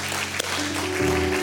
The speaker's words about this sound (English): Does anybody feel like just clapping your hands right now and saying, I love you, Jesus?